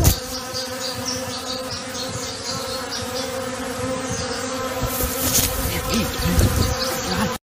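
Bees buzz steadily around the microphone outdoors for several seconds, a dense droning hum with wavering pitch that swells and fades as they pass, loud and continuous with no voices.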